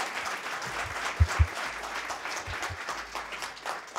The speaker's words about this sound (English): So before we announce the winners, though, another round of applause, please, for these great competitors.